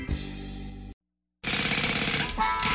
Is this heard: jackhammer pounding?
yes